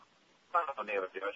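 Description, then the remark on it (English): A caller's voice comes through a poor telephone line to radio station WQAM, thin and band-limited, the speech garbled and unintelligible for about a second after a brief quiet start. “What is it? Bad phone.”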